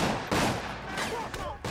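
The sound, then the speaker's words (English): Several sharp gunshots crack out at irregular intervals, loud, over a dense, noisy background: a group of men shooting at an escape car, with gunfire exchanged back and forth. “A bunch of guys came out and are shooting at the car. So the car gunfire, shooting gunfire back and forth.”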